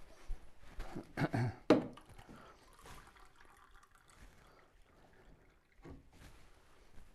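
Water is poured into a drinking glass to refill it, in a short, splashy burst that quickly tapers off, followed by faint trickles and light clinks. No one speaks.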